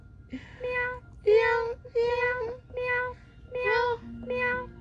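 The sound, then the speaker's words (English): A toy cat machine meows about six times in a steady, evenly spaced series, each meow flat and buzzy with the same pitch, fairly loud. “Are you freaked out by the meows?”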